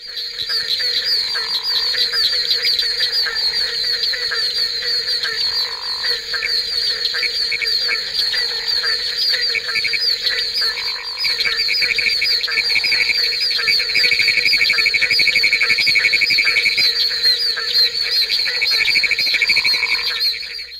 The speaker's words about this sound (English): The barking tree frog is easily recognizable in a chorus recorded in Highlands County, Florida, even though 10 other species of frogs were calling at the same time.